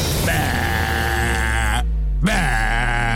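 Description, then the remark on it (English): A loud, harsh sheep-like bleat sounds in two bursts: a long, strained cry that breaks off briefly, then a shorter one. It is aggressive, with no talking. “It's like an aggressive sheep.”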